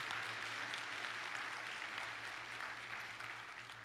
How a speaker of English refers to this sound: And I think a polite applause of thank you to these men who serve. Thank you so much, men.